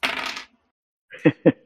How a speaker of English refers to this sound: Let's get out my lucky D66 dice. Da-da-da, here they are.